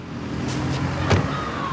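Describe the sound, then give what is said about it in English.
Car doors open and shut with a few sharp clunks over a steady low rumble of traffic or an idling vehicle, as people climb out of a car onto a busy two-way street in Mexico where police are setting up crime scene tape. “We get out of the car, and it's this busy two-way street with a strip of grass down the middle, separating the lanes.”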